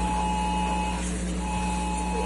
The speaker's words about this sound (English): And as if the trial wasn't already surreal enough, phones started buzzing in court warning of severe weather.